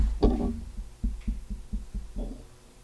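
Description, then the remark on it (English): A table shifts and bumps against a microphone, giving a sharp initial knock followed by a string of dull, low thuds in an uneven, throbbing rhythm, with no voices. “Oh, the table moving.”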